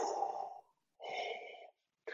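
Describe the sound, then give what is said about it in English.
Darth Vader's slow, heavy mechanical respirator breathing from a Star Wars trailer: a long hissing inhale, a pause, then a matching exhale, steady with a raspy, filtered tone and no talking. “We did not get a look at Vader yet from the trailer, but we did hear the voice, or the breathing.”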